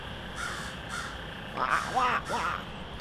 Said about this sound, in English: Wow, that bird sounds cool.